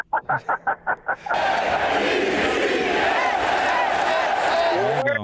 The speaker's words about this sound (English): I just wanted to help BYU with fans out and Zach Wilson fans on how the Jets chant will go.